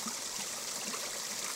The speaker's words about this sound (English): There's a little stream here, which I must have walked past hundreds of times over the years. But there's just a little delicacies, the water gently pours over the rocks and little ice forms and bits of snow.